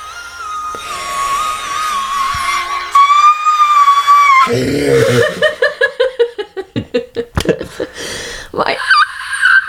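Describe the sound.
A voice strains for a shrill, high-pitched whistle-register note, holding a thin wavering tone before breaking into choppy bursts of laughter, then squeaking out one more high note at the end.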